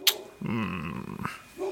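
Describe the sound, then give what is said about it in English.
A dog gives one drawn-out, tonal bark lasting under a second, preceded by a sharp click and followed by quiet background noise. “You're not normally the one with a barking dog.”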